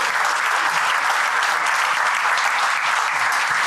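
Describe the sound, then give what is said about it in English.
Sustained, dense applause from a live audience at the Black Box in Belfast in January 2023, for a show with Mark Lewison; a steady loud wash of many hands clapping at once with no pauses and no voices standing out. “This is us live in the Black Box in Belfast with the one and only Mr. Mark Lewison. Cue applause.”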